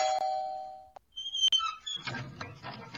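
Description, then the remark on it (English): An electronic house doorbell chimes in two tones, a sustained first note followed by a higher second note, ringing clear before scattered rustling and faint movement noise take over. “You ring the doorbell.”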